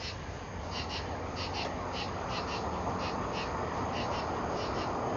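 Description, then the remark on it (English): Birds call loudly from the trees in quick, high paired chirps that repeat in a steady rhythm over a constant outdoor hiss, with no one talking. “Now, these birds be loud up in these trees. You hear them?”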